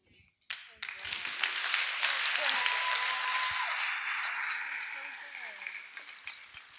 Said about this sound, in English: It is so hard to get up here and share your story. I'm going to make you clap one more time